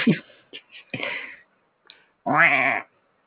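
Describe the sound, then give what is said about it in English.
A human voice imitates a duck's quack like a knockoff Donald Duck, as a Patronus, in a raspy, squawking cartoonish way: a few short choppy bursts, then one longer, loud, nasal quack near the end. “It's sort of become a knockoff Donald Duck.”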